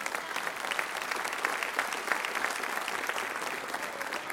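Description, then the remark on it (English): An audience claps their hands for the Lord Jesus in sustained, dense applause, a steady crackling wash of many overlapping claps with no voices standing out, holding at an even moderate level throughout. “Can you give him a good hand clap for that?”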